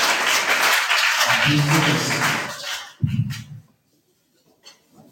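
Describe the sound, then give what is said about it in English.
An audience applauds loudly in a dense wash of clapping for about three seconds, with a few voices calling out underneath, then it trails off into near silence. “Give a big clap to Jesus.”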